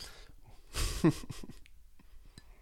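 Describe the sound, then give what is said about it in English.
An airy slurp of someone sipping hot coffee, followed by a brief gulping swallow and a few faint mouth clicks, with no talking. “Just gonna sip some coffee.”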